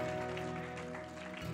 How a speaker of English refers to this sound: Why don't you give Him another hand clap of praise?